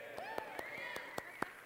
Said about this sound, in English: Okay, that's beautiful. The golf clap, Jesus. Oh, excellent putt, Jesus.